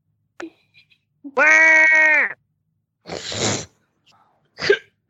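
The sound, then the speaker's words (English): A person imitates a goat with one loud, sustained nasal bleat lasting about a second, followed by a couple of breathy, noisy huffs like laughter or exhales. “give me your best goat impression right now.”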